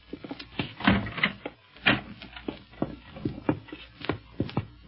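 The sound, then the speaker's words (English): A door ahead in a house is opened with a rapid series of wooden clunks and rattling knocks over a few seconds, fairly quiet, with no voices. “There's a door ahead. Yeah, let's try it.”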